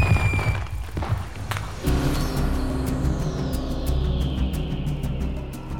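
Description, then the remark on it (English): Fireworks boom and thud in a steady volley, deep rumbling blasts layered with sharp crackles, fairly loud and continuous with no talking over them. “Oh man, I love fireworks!”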